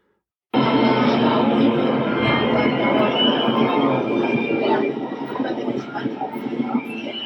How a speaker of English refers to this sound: What you're hearing in the background now are the sounds of the crowd settling in and orchestra members warming up.